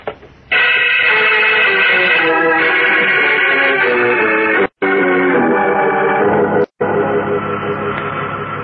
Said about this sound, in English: It's just a mechanical hum from the power equipment.